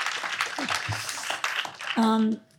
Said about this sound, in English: Let's give a round of applause for Zabars.